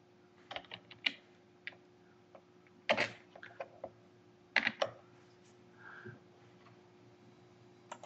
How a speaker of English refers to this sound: Doing that mail thing again, typing and trying to talk at the same time, and it just doesn't work.